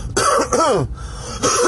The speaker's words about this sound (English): nope, that's not the coronavirus. That's phlegm, bruh. Phlegm. Alright, yo, so check this out. Like it's called clearing my throat.